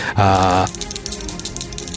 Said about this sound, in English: Okay, so 6 and a 2 on the dice, so that's 4 successes.